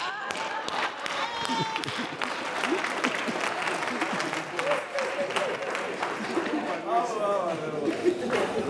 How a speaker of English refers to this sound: I'll clap for myself.